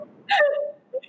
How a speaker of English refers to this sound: Yeah. I'm like, at least I got a sweat in. I like definitely burned some calories and I'm panting hoarse here now.